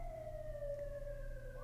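An emergency vehicle siren passing outside holds a steady wail that slowly drops in pitch as it passes, over a low traffic rumble, with no one talking.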